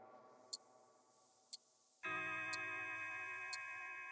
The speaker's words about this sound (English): We had had this ticking sound that had been going on throughout the whole piece, and we were like, right.